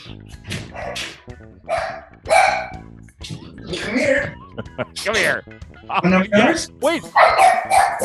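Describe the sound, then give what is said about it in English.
A French bulldog lets out a string of short, yappy barks and whimpers, mixed in with a person talking and calling to it. “Go feed your dog, because I definitely don't want your French bulldog on my bed.”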